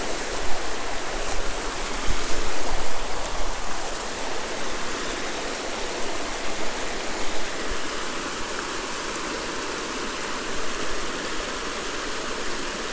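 A creek near where the speaker lives flows steadily, a continuous rushing, babbling wash of water that stays fairly loud and even throughout, with no voices over it.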